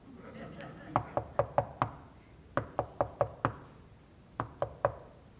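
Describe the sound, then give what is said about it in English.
Sharp knocking on a door comes in three quick bursts, five raps, then five more, then three, crisp against a faint background hum. “Knock. Do you know what this means? Knock.”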